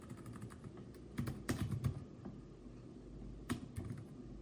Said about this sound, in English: Okay, well, it's not pulling up on here. I don't know why this software is not pulling it up. It's weird. Maybe I'm typing something in wrong.